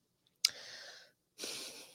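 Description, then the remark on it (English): A pet named Annie, coming into a studio, gives a sudden snort that trails into a long, breathy yawn, followed by a second airy exhale after a brief pause. No one speaks. “Coming in like gangbusters to yawn at me and then go lay on her bed in the studio.”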